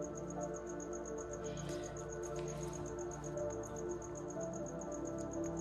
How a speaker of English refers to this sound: And the crickets.